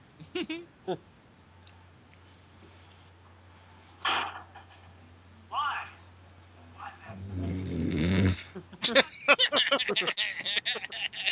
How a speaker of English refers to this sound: Guy snores louder than you